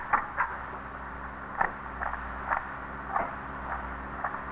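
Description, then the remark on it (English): A key works in a door lock, making a series of short metallic clicks and rattles at uneven intervals over a steady low background hum, with no one speaking. “It couldn't work better if it was made for the lock.”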